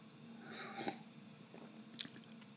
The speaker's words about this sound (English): Let's see, that would come to... Let me have another little sip while I figure this out.